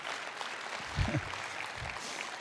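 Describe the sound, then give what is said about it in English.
An audience applauds steadily, a dense, even wash of many hands clapping throughout, with a few brief murmurs of voices rising underneath in the middle. “I don't know if you're clapping because you like the point or clapping that I didn't break my neck.”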